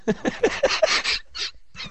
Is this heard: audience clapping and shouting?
no